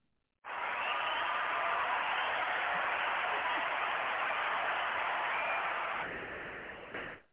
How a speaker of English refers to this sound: What's up? Thank you for those applause, man. Man, the applause was just great.